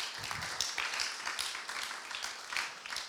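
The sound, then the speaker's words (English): A crowd in a room in Australia applauds steadily, many hands clapping in a dense, bright patter that holds at a fairly even level throughout with no voices. “I think you guys deserve a round of applause for that.”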